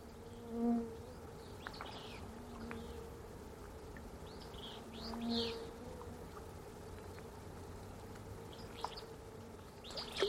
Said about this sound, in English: It's late afternoon at a remote mountain lake. Songbirds chorus in the distance. Insects are swarming near the surface of the water, and the trout rise up to feed on them.